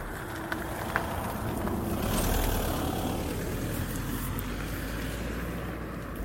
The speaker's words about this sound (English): And here comes a car.